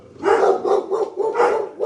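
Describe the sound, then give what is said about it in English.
Dogs barking loudly, a rapid run of about five sharp barks in quick succession with barely a pause between them, no talking. “Dogs are here. Thank goodness we're all barking.”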